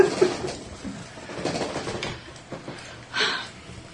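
A pigeon coos softly a few times, low throaty burbles against a faint background hum, with a brief rustling burst near the end.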